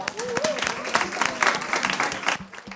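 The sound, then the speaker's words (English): An audience breaks into dense, steady applause lasting a few seconds, many hands clapping at once with a faint whoop or voice rising through the noise before it tapers off. “I think give that's a round good. Of applause, everybody.”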